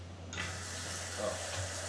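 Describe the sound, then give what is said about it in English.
Water pours steadily into a glass for a couple of seconds, a soft continuous splashing rush that starts suddenly and stays fairly quiet over a low background hum. “You can like get some more water if you like turn the phone there. I used to think that it was like. Yeah, just put the glass in there.”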